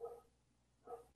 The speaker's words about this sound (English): Is there dogfights going on in your backyard? Yo, shut the fuck up. You dogfights, dude?